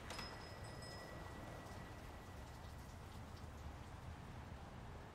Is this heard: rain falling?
yes